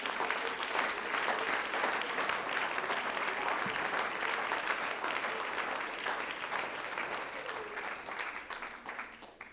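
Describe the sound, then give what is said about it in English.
An audience claps their hands unto the Lord in sustained, dense applause, a steady crackling wash of many hands that holds loud throughout and eases slightly toward the end, with faint crowd murmur beneath. “Oh, somebody clap your hands unto the Lord, all you people.”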